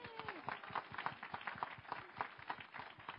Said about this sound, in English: if you have been a marriage mentor in this church, if you have helped, can you just stand so we can appreciate the time and effort that took? You want to clap? Yay!